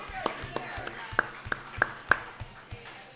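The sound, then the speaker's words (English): A brief, light round of applause for a new assistant: sparse, steady claps about three per second, fairly soft, with faint murmuring underneath rather than a full roaring crowd. “So if we could have a round of applause for our new assistant,”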